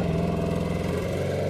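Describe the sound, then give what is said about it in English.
A 1956 Porsche sports car engine runs loud, its throaty rumble shifting slightly in pitch as it revs, with no voices over it. “It's a 1956 Porsche.”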